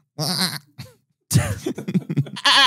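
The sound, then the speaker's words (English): A person imitates a baby goat, voicing a wavering bleat, then a longer burst of quavering bleats ending in a loud strained cry, fairly loud with brief pauses between. “That was a baby goat.”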